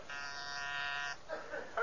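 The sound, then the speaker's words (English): An intercom buzzer sounds a steady, harsh electric buzz for about a second with strong evenly spaced harmonics, then cuts off, followed by faint voice-like sounds from the speaker. “Let me buzz him on the intercom here and put your mind at ease.”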